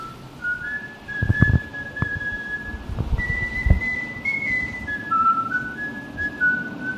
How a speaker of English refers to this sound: Yeah, there's a dude whistling in the rest stop bathroom today. And it seems like that's like a crazy thing to do, right?